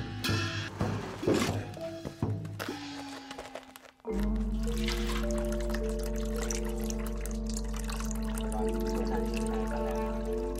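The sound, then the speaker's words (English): Villagers in China pour brine, brought down from the mountaintop, back into a salt well, splashing and gurgling for a few seconds before a steady, droning hum settles in underneath the continuing liquid noise. “The villagers bring brine down from the mountaintop and pour it back into the salt well.”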